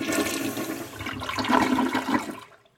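A toilet flushes with a loud rush of water that churns for a couple of seconds, then drains away and falls quiet. No voices.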